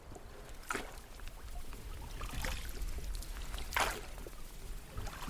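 A river trip leader's oars dip and pull through river water, with three splashy strokes at a steady, unhurried rhythm over a constant low wash of flowing water. No voices.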